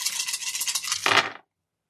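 A player's skill dice, two of them white, rattle steadily for about a second, then clatter in a louder, brief tumble before falling abruptly silent. No voices are heard.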